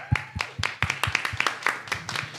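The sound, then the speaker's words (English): A small group gives a slow clap in a steady, unhurried rhythm, about four or five beats per second, the sharp hand claps moderately loud with no voices over them. “Slow clap.”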